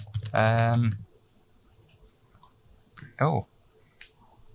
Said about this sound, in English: Are you cheating as well? Because I can hear the keyboard click.